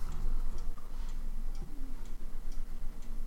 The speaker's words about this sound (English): It's just occasionally you hear clicking. It's just... Yeah. Just one of us playing Solitaire on the computer.